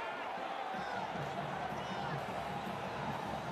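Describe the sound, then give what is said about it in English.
Dense, steady crowd roar at a sold-out OSU football game as the defense asks for crowd noise on third and 9, a loud wash of many voices with scattered shouts and whoops and no pauses. “Defense asking for some crowd noise.”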